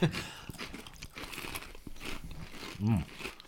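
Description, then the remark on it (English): Crisp crunching and chewing of a beef bouillon flavored potato chip, with irregular bright crackly bites over a few seconds and a faint voiced murmur near the end. “They are crunchy.”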